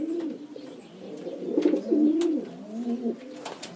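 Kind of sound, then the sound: bird, pigeons cooing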